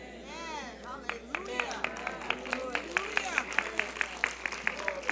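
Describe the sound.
An audience claps in a steady rhythmic beat, about three claps per second, over murmuring and raised voices; the clapping starts after a second or so of crowd noise.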